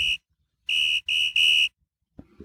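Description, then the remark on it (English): A loud, shrill, high-pitched whistle sound effect, played as a bumper, blows four times: one short toot, a pause, then three longer blasts in quick succession, followed by silence and a faint, brief rustle. “So we'll do some here on Boss Jock, bumper here, a whistle high pitch.”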